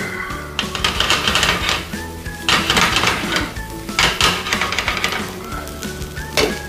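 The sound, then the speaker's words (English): Rice seasoned with salt, coriander and pepper, tossed and stirred in a hot pan: bursts of rattling, scraping clatter recur every second or so over a constant crackling sizzle, loud throughout with no talking. “Give that a quick toss.”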